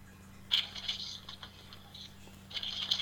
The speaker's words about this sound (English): You hear me shuffling papers?